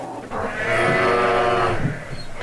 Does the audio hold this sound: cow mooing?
yes